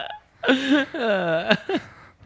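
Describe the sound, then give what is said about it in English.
A long, drawn-out burp with a wavering, voiced tone, ending in a sharp croak and followed by a brief second belch, loud with no talking. “You burp and he shoots you?”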